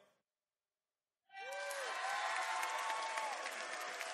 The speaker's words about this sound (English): By the way, I had some cheering people. I had some booing people over here.